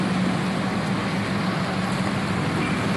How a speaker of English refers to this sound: And there's cars and trucks everywhere. Man, oh man. It's sort of the 3 day before Christmas rush.